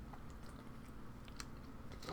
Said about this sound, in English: I had a damn good time as I sip water.